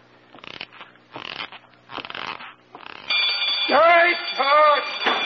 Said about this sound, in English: Set off that burglar alarm, loud.